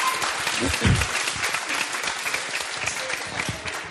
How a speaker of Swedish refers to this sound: Men stor applåd för de här. Jätteduktiga.